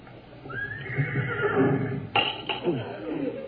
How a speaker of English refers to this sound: And what was that? It's funny. It almost sounded like a horse.